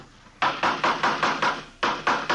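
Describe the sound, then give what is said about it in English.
A hammer pounds on wood as someone builds a wooden coaster, in a quick, steady series of about ten sharp, loud knocks, with one brief pause before the last few blows. No one speaks. “Say, would you hand me that hammer there, officer?”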